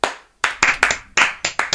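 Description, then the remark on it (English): A short burst of sharp hand claps, about eight irregular slaps in under two seconds, sounding like a small group or a single pair of hands rather than a full crowd. “So, a round of applause, please”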